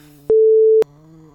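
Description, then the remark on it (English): A single steady, mid-pitched censor beep lasts about half a second and starts and stops abruptly, loudly cutting over a voice that is talking just before and after it. “Editor's note. Beep out.”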